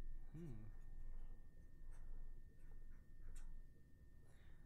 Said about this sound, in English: All right, I'm writing down that.